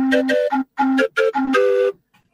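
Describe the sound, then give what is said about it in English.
A sampled Swanee whistle plays a quick, bouncy tune of about seven short notes, bright and strongly tonal, with brief gaps between phrases and a final held note that cuts off. No one speaks. “Which is the Swanee whistle. Very, very suited to short samples.”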